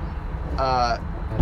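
A steady low rumble of many cars moving past fills the background, with a brief tonal whine or horn-like sound rising over it for a moment.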